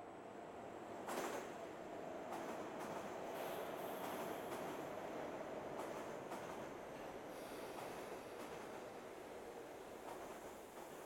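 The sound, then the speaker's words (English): A G train subway rolls along at speed late at night, around 2 or 3 a.m., a loud, steady rumble filling the car, with a faint sustained whine and sharp clanks and rattles breaking through every second or two. No one speaks. “It's late at night and I'm coming home on the G train.”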